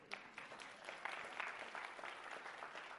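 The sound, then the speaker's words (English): An audience breaks into steady applause for Jim McKee, announced as a new elder nominee: a dense patter of many hands clapping at even volume for the full stretch, with no voices standing out above it. “You can give Jim a round of applause.”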